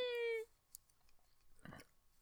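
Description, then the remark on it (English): Someone chokes while drinking, a single short, wet sputtering burst, following a brief steady tone at the start. “You choking on my intro?”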